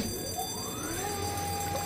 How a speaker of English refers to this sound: What's that alarm?